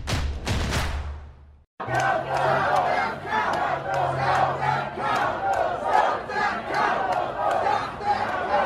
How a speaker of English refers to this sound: Ah yes, who could forget the near simultaneous chanting from the crowds of Trump supporters, some saying to stop the count and others saying that we needed to count the votes.